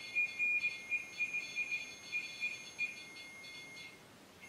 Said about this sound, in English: If you lived here for a long time, can you step away from that machine? So it stops making that little alarm sound.